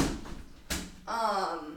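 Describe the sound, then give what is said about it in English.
A door is pushed shut with one firm, sharp thud after some soft shuffling, then a voice begins speaking just afterward. “I'm going to shut my door because they're just hammering away outside.”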